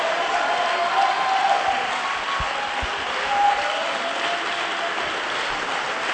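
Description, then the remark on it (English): An audience claps their hands in sustained, dense applause, steady and loud throughout with a slight swell partway, with no clear speech over it. “And whether you feel like clapping or not, the Bible said, oh, clap your hands.”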